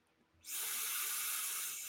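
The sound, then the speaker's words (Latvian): A sudden rush of airy, whistling hiss from a vape RDA atomizer's top airflow, held close to the microphone, starts after a brief quiet moment and holds steady and loud to the end, with no talking. “Viņam tāda raksturīga svilpšana. Bet tādi visiem ar augšējo gaisa padevu, cik esmu pamanījis.”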